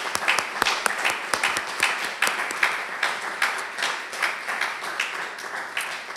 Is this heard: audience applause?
yes